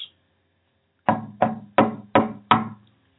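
Five firm knocks on a wooden door in a steady, evenly spaced rhythm, each with a resonant, hollow thud, loud, with no voices.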